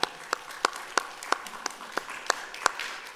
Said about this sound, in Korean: 할렐루야. 네, 주님께 영광의 박수입니다.